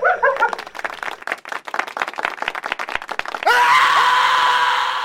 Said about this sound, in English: I hate it when they scream.